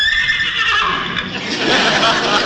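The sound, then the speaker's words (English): A man's voice imitates an excited horse whinny, a loud, high, wavering neigh that rises into a breathy, noisy trill and holds for a couple of seconds. “What's your horse so excited about? That wasn't the horse. That was me.”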